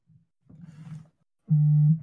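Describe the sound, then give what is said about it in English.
A mobile phone vibrates with a low, rattling buzz in short bursts, ending in one loud, steady buzz that lasts about half a second. There is no talking. “I hear it buzzing.”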